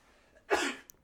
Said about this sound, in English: That was loud. Bless you.